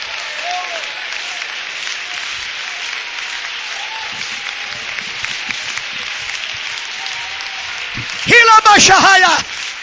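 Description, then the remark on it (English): A standing audience claps hands in praise of the Lord in a dense, steady wave of applause that continues throughout, with a loud voice calling out over the clapping near the end. “Clap your hands and praise him.”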